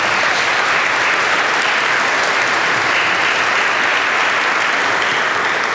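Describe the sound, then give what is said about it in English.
A large audience applauds steadily and loudly, a dense wash of many hands clapping at once without pause for several seconds: a round of applause for the head of Bartley's Burgers, who just had her 90th birthday. “So let's have another round of applause.”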